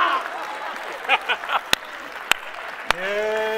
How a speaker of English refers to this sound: Come on, y'all gotta clap. That was a good word.